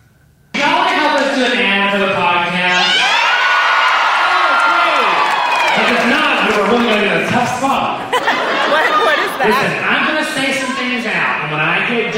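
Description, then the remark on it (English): A large live comedy show audience in Seattle shouts and screams together, filling in the blank during an ad read, loud, with many voices merging into one sustained roar that swells and shifts for about eleven seconds after a brief quiet start. “here's a fun video of me reading you about BetterHelp and the audience filling in the”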